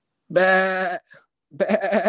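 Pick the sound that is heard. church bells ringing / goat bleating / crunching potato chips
goat bleating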